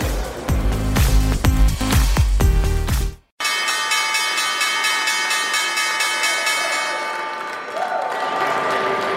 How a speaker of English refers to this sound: That was the opening bell here at the New York Stock Exchange.